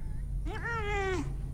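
A single drawn-out cat meow, rising then sliding down, clear, heard alone over a low steady hum with no talking.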